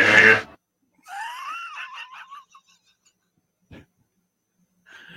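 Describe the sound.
A voice imitates a toothbrush: a short breathy rush, then a wavering, buzzy hum that warbles up and down for about a second and a half, followed by a faint click.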